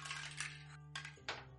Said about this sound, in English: Wow. You missed the dice tower. Wow. Eight. Shit. Eight.